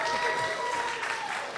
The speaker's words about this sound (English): I feel like people aren't applauding hard enough, and I feel like you're going to blame me for it later. So guys, please, like, bring the heat, please.